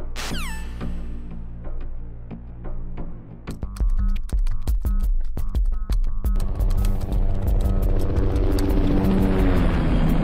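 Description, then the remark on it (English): A helicopter's rotor throbs loudly, its rapid rhythmic thumping kicking in a few seconds in over a deep, steady engine drone that continues to the end. “we haven't added a chopper. Have we?”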